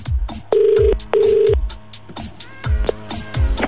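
Phone line ringing as a radio show calls a listener back: two steady electronic ring tones, each about half a second long, sound in quick succession over a thumping beat in the background, with no one speaking.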